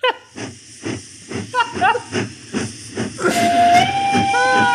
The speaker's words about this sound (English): I had to hear that train come in.